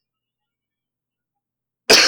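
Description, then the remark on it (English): Long silence, then a single abrupt, loud cough bursts out right at the end, harsh and breathy, with no talking around it. “Excuse me. Sorry for all the coughing.”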